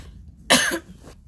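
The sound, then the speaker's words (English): A single sharp cough bursts out at the microphone, brief and fairly loud, with quiet room noise before and after and no talking. “And you know I got a message because I got the cough.”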